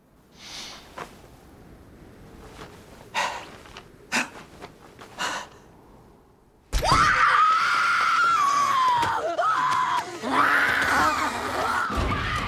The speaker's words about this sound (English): And then they do like that snap cut, just like a couple seconds, where the witches appear and they're like screaming and laughing.